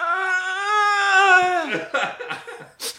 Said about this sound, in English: … answers with a long, pained grunt.